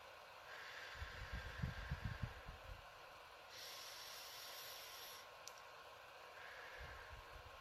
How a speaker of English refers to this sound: Feel the warmth as it rises through your nostrils, pausing at the top and then breathing out through your lips. Just purse lips like this.